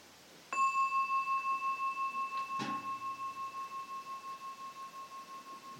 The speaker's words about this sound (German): läute ich die Glocke, wenn irgendjemand hinausgehen möchte.